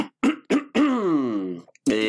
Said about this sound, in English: It wasn't a cough. I was clearing my throat.